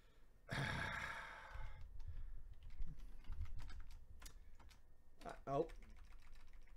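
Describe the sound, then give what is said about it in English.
Typing on a wireless computer keyboard, a run of quick, irregular key clicks lasting several seconds, opening with a loud breathy exhale or sigh near the start. “Fucking wireless keyboards, man.”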